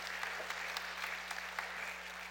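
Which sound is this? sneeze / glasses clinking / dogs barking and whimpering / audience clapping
audience clapping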